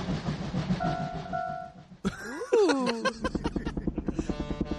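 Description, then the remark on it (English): A synthesized tugboat effect played on a kid's keyboard: rumbling noise under a steady two-note horn, then a loud horn blast that bends downward, followed by fast, even chugging pulses. “By the way, play some of the little fucking weird little sound things you were doing earlier.”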